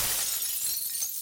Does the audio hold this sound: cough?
no